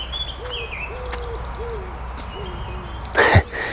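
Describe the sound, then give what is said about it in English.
A wood pigeon coos a rhythmic phrase of soft, low notes, always ending on an offbeat, with faint higher birdsong around it and a brief rustling burst near the end. “There's the pigeon over there, wood pigeon.”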